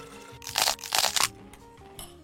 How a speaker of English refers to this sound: The one and only Martinelli's apple juice. Is this the bottle that if you crunch on it, it sounds like an apple? Oh, excellent.